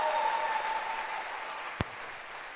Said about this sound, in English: Put your hands together for Mariami, Mary, the choir, the instrumentalists, and much more now, a bigger hand clap